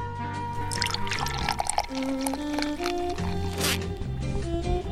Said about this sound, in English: Why, it's going for a pour. I do not hear it. It's a very, very subtle, quiet pour. I'm going to try and pour one for myself here.